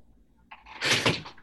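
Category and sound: household object, door opening and closing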